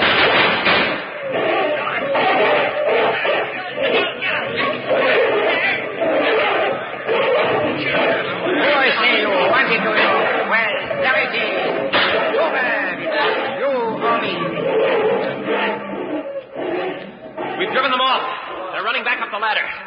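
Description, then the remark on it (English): A chaotic scuffle goes on and on, with thumps, slaps and smacks landing irregularly amid a tangle of shouting, excited voices, loud and dense throughout with no pauses. “Oh, I say, Captain, there's a fight going on up ahead.”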